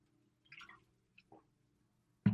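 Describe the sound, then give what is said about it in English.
Someone takes a sip of water, with a few soft wet slurping and swallowing sounds in near silence, then a sudden louder clunk at the end, maybe the glass being set down. “Give me just a second and reflect on that while I grab a sip of water.”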